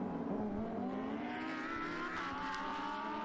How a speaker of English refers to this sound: And the safety car will pull into the pits, and we will be back racing and on the power quickly as he comes through turn 11 is Eduardo Piscopo.